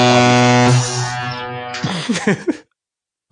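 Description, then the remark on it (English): A loud, blaring air horn blast from a soundboard holds steady for about a second and a half, then cuts off as a brief burst of voice follows before silence. “Please tell me that was like an air horn soundboard.”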